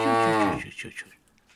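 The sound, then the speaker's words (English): A single loud, drawn-out moo from Hilda, the family's cow, upset by the Nisse, strained and agitated, trailing off into quieter breathy sounds after about half a second. “The Nisse had upset the family's cow, Hilda.”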